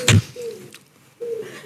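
An owl hoots twice outside, each a steady, slightly falling note, separated by a brief pause. A sharp thump sounds just before the first hoot, and no one speaks.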